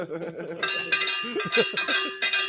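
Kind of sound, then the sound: signal or alarm, bell being hit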